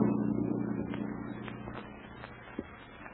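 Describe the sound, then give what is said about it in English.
A motorboat engine drones steadily with a low, rumbling hum, easing slightly in volume over a few seconds, with a faint clank near the end and no voices. “This buggy makes a lot of noise.”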